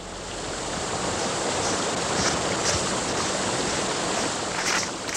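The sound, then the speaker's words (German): A steady, dense roar of rushing water from a waterfall, with a constant loud hiss and no pauses or voices. “und wartete einige Meter vom Wasserfall entfernt auf sie.”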